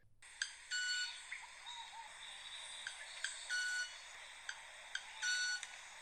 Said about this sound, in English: This is a bird that can sing with its feathers. They're a small, sparrow-sized bird that lives in South America. What distinguishes them, though, is the sound they make. It's a kind of mechanical buzz that it produces from its wings.